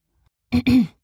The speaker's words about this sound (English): "We're not," said Oren, clearing his throat.